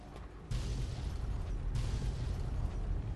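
Video game explosions boom loudly one after another, with two sharp blasts setting off a heavy, continuous low rumble that fills the whole stretch. No one speaks.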